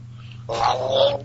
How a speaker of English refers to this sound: Here's reverse on a cat. Backwards, I need water.